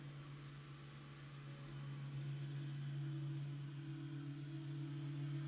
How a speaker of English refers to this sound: Sorry, someone's mowing a lawn right outside. Don't know if y'all can hear that. Hope it's not too distracting.